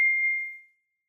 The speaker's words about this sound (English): What was that bell all about? No, I'm getting texts.